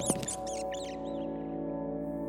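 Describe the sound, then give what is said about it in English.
A rat swimming through murky water screeches in a quick burst of sharp, high-pitched squeaks, then falls silent while a steady, low droning hum carries on to the end. “The rat plunged into the murk, swimming out into an adjoining room, screeching its displeasure.”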